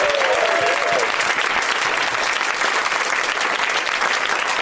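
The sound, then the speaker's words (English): A studio audience claps steadily for the introduction of guest Roy Abrahmson, lead actor in the film Escape from Tomorrow, a dense, sustained wash of applause at even volume, with a brief whistle near the start and no one speaking. “Let's have a round of applause, even though you still might not know who he is, for Roy Abrahmson, everybody.”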